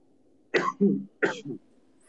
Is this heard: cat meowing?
no